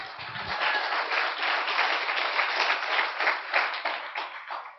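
A church audience, gathered for a morning service, claps together in a dense, steady burst of applause lasting several seconds, many hands overlapping into a bright, sustained patter with a brief low murmur at the start.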